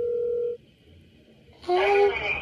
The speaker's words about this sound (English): And then he said his phone number, so. Let's call it.